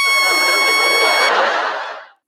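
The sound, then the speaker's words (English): Gonzo's trumpet blares on its own, without him blowing it: one loud, harsh, brassy note that holds steady for about a second, then breaks into a noisy, buzzing rasp and dies away within about two seconds. “Gonzo's not even going to try blowing his trumpet, but then it blares without his help.”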